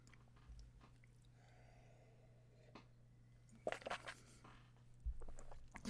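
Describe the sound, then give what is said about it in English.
Someone takes a sip of a drink: a brief cluster of soft wet mouth clicks and a gulp, over a low steady hum, with no talking. “Need a sip.”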